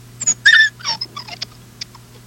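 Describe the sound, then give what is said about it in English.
A dog yelps in a quick run of sharp, high-pitched squeals as its owner hits and beats it during a live stream, followed by a few softer whimpers and faint knocks, over a steady low electrical hum with no talking. “But she's hitting and beating her dog on a live stream.”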